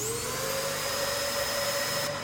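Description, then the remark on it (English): A specialized Hoover vacuum cleaner, used for sucking up a dead person's ashes, runs steadily with a constant loud whooshing roar and a high motor whine layered on top, lasting the whole time with no voices. “So if you do plan on leaving Grandad in the happiest place on Earth, bear in mind he probably will wind up in the belly of a vacuum cleaner by the end of the day.”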